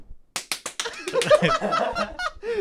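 Four sharp hand claps land in a quick, even rhythm, then give way to a denser, noisier stretch of overlapping sounds that continues to the end.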